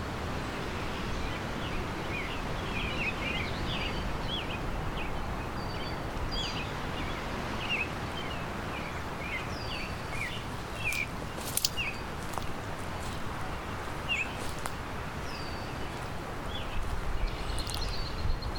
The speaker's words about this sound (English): I can hear an oriole. There's a Baltimore oriole. A high-pitched whistle.